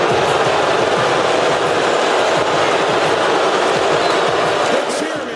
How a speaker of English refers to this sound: Wow, that's quite the boo.